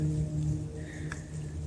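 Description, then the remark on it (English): Light rain begins to patter softly over a steady low hum, falling on pockets of open water amid ice shelves where ducks are swimming, with a single sharper drop landing partway through; no voices. “And now it's starting to rain.”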